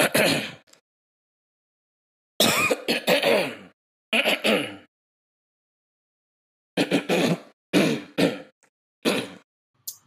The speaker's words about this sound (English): Look to your left. Look to your right. Clear your throat.